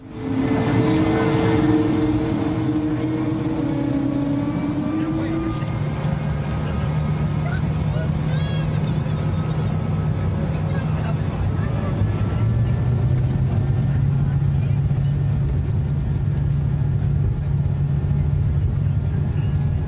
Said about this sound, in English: But let's listen to how quiet the engines are at takeoff.